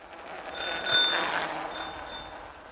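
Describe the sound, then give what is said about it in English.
A bicycle bell rings in two quick bursts, a bright, high metallic trill that rises over a soft whooshing background and fades between rings. No one speaks. “It came on a bicycle.”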